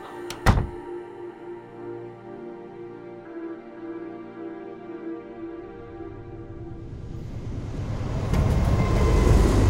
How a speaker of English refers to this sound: I'll climb onto the train and make my way to the locomotive.